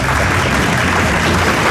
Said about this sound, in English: That doesn't deserve applause. That is not clever.